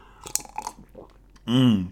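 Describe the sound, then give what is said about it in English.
Soft wet slurps of someone sipping tea, a few quick mouth noises, then a loud, drawn-out contented vocal sigh right after the sip. “That reminds me, I think I need a sip of the PGE right now.”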